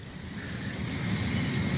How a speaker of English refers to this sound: He knew the train was coming. That's no, well, he heard it. He heard it before our fucking microphone hit.